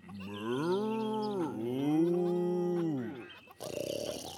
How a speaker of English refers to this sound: Farmer Hen heard the mooing and said, Now the snore's over by the cows.